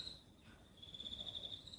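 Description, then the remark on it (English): Crickets chirp steadily outdoors on a warm, quiet night, a thin high-pitched trill running continuously in the background with no voices. “The crickets are soothing.”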